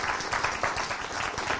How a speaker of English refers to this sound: Okay, so can I just get a big round of appreciative applause for our speakers? Thank you so much.